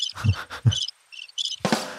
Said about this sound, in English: I'll wait for the crickets to stop.